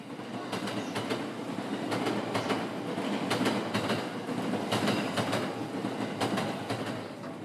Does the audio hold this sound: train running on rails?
yes